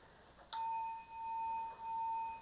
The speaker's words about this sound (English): Every time the bell is struck, we stop what we're doing and just turn to the breath for about three breaths or so.